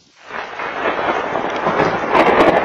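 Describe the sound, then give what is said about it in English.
Thunder rumbles in from near silence and builds into a loud, sustained roll, with a few sharper cracking bursts toward the end, during a spring thundersnow storm with lightning and fast-falling snow in Arnold; no voices are heard. “The sounds of a spring storm coupled with the sights of snow. Well, there was a lot of lightning and there was thunder.”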